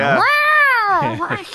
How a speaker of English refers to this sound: I can hear the cat now.